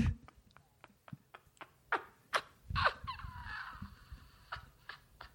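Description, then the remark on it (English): A bird that got inside calls with a series of short, sharp chirps at a steady pace, then a louder drawn-out squawk, followed by a few more clipped notes. “A bird got in here.”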